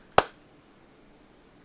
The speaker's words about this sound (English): Clap sync. All right. Clap sync. 3, 2, 1.